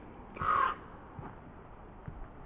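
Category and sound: bird, raven calling overhead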